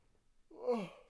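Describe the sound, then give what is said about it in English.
A single drawn-out yawn, a breathy voiced sound that swells and then trails off over about half a second. It is fairly quiet, with no talking. “So time for some general plugs, I guess, because the yawning started, which means the episode's over.”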